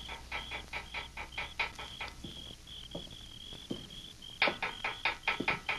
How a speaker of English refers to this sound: Under cover of darkness, he made his way quietly to the rear of the adobe building, and picking up a small stone, he rapped on the bars of Hawk's cell window.